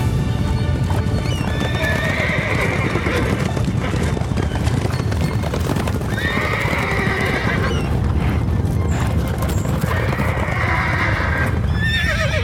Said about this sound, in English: Well, we ran toward the southern coast of the island. Which means we're right in the path of the wild... horses!